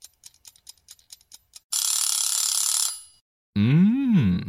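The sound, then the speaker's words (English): A short jingle marking the Game Night Grub segment: quick ticking clicks, then over a second of bright, shimmering bells ringing loudly, ending on a warbling, wavering tone. No one speaks. “Oh, I hear the bells. I can hear the bells.”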